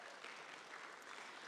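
Steady crowd applause for a team that has worked on a 13-month project, a dense wash of many hands clapping with no distinct individual claps, holding an even, moderate loudness throughout.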